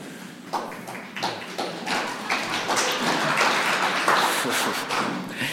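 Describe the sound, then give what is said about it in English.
An audience breaks into applause for a man's wife of 35 years, a dense, steady patter of many hands clapping that rises slightly and holds for several seconds, with a few faint voices mixed underneath. “You should get applause for putting up with me for 35 years.”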